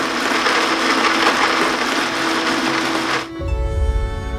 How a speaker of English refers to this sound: Activating blender.